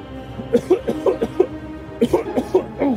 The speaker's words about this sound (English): You hear a coughing coming from inside the beast.